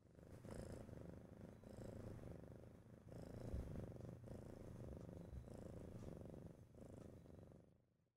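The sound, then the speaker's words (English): A new kitten purrs steadily into the microphone, a continuous low rumbling vibration with soft rhythmic pulses as it breathes in and out, with no talking. “On the mic with me today is Calliope, one of my two new kittens.”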